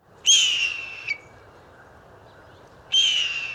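Two loud, high-pitched screeching calls of a hawk, each lasting under a second, separated by a brief quiet pause, with no one talking.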